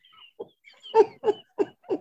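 Pigeons cooing in a run of soft, low, throaty notes, five short pulses in a steady rhythm, with a few thin high chirps at the start. No one speaks.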